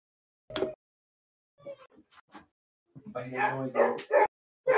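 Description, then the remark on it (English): A voice imitates a dog barking excitedly: one sharp yap, a few soft yips, then a rapid, loud run of barks and yelps. “Oh, it's a barking dog.”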